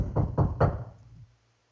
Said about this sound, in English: About 10 minutes after they had me on hold, all I hear is a knock on the door.